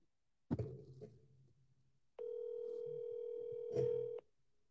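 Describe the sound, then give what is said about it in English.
A soft handling thump, then one steady electronic ringback tone from an outgoing phone call, a flat buzzy hum lasting about two seconds before cutting off. No one speaks. “Let's see if Taylor answers.”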